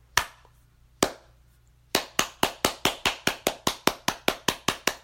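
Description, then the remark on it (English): Applause for a step dance routine, from students taking their finals and the professors giving them. It starts hesitantly with two separate claps, then builds into steady, brisk clapping at an even rhythm, loud and sharp, with no voices. “A literal round of applause as the others in the room with me, both those taking their finals and the professors giving it, applauded the performance.”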